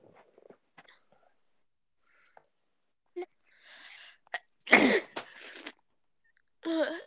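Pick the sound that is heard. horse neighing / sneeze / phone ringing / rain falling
sneeze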